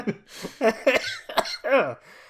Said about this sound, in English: Yeah, I feel like if I laugh, I start coughing.